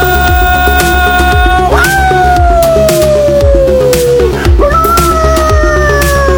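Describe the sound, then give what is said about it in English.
A dog howls in two long, drawn-out wails, each jumping up in pitch and then sliding slowly downward, loud over a busy rhythmic musical backing. “It's a dog howl kind of day, man.”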